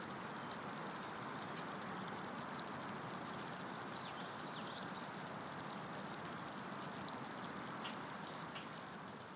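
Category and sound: nature, flowing river water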